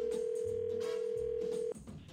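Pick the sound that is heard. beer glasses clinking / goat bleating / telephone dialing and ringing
telephone dialing and ringing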